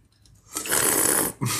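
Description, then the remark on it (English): A loud, airy slurp as someone sips a drink, a steady hiss lasting under a second, then a brief pause and a short breathy follow-up sound. No talking. “It was a nice sip.”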